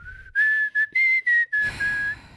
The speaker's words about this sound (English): But so I mean, that's a roundabout way of saying, yeah, I can't fucking whistle.